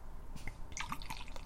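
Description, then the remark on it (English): Dark beer being poured into a glass, a soft gurgle with scattered bubbly drips and splashes over a quiet background hiss, lasting under two seconds with no voices. “All right, so here's the pour.”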